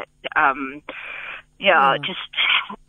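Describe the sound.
A phone ringtone plays a song with a sung vocal, tinny and thin as if from a small speaker, running in several bursts over a few seconds at moderate volume.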